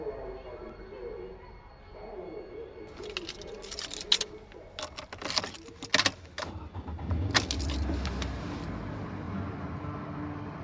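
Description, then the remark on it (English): Keys jangle and a string of clicks and clunks sound as someone climbs into a car, followed by a steady low rumble like an engine idling underneath. “The moment I get in the car, I start commenting on what I remember, like automatically, like on cue.”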